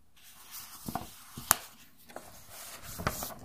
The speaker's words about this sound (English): It's my fingers touching the paper.